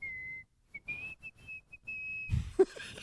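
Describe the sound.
A person whistles a short tune: a long held note, a brief pause, then a run of quick and sustained notes, ending in a burst of rustling noise.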